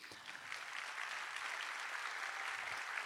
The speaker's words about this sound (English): Can I get some claps?